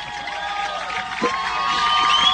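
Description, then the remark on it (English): At a night football game against Central Columbia, Lewisburg fans cheer and applaud Cordell's first career touchdown, a 40-yard run, in a steady, dense roar of voices and clapping that swells slightly toward the end, with a few high whistles cutting through. “And the Lewisburg fans are also giving him a nice round of applause.”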